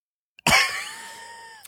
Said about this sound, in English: This isn't performative coughing.